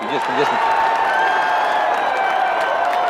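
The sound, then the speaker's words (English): A large crowd applauds and cheers steadily throughout, a dense wash of clapping mixed with raised voices and whoops, sounding full. “I think they're applauding for Willie Anderson.”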